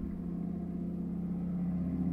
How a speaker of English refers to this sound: It's a loud truck. It's a very loud truck.